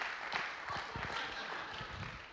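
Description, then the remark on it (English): A church audience applauds the speaker's younger brother, a worship leader, with steady dense clapping spread across the whole stretch and no single beat standing out. The sound is moderate in level, and no one speaks over it. “Would you guys just give a great round of applause to my younger brother”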